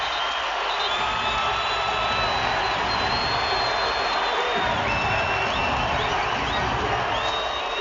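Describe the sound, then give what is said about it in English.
A large basketball arena crowd in Provo, on their feet during a San Diego State timeout in a game against BYU, roars and cheers continuously, a dense, loud wash of voices with sharp whistles and high shouts cutting through. “Timeout San Diego State. Crowd on their feet here in Provo.”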